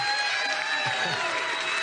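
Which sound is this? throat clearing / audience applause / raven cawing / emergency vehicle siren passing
audience applause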